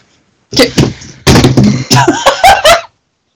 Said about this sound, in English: just basically fell off of her chair. I almost fell back.